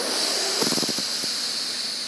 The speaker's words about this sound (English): Inhale through the right.